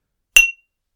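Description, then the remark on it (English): A single high-pitched clink of drinking glasses touched together in a toast, a bright tap with a short ringing tone that fades quickly into silence. “Ooh, high-pitched clink today.”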